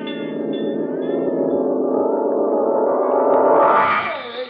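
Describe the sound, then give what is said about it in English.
A fire bell rings loudly and continuously, signalling a fire at a gold mine, with a dense, harsh metallic clangor, swelling slightly brighter near the end before cutting off. No voices are heard. “That's the fire bell.”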